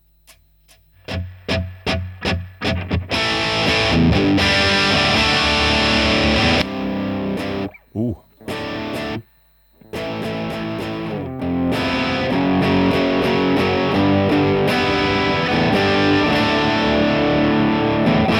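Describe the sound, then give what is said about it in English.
Distorted electric guitar plays loud through the amp's dirty channel on its raw voicing, opening with a few quick choppy strums, then thick sustained chords with brief stops before ringing on. Someone briefly exclaims once. “Go dirty channel. Maybe back up on the reverb a little bit for the dirty channel.”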